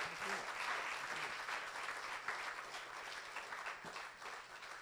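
A crowd applauds steadily, many hands clapping in a dense, even wash of sound that holds at a constant loudness throughout, with no voices standing out.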